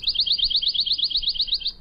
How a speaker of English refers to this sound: Here's the pine warbler, regular speed,